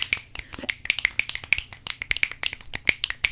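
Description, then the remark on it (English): Rapid finger snapping, roughly two dozen sharp, bright clicks in a quick, slightly uneven rhythm, heard alone with no talking. “Well, on that note, I think it's time to snap, crackle, get this podcast popping.”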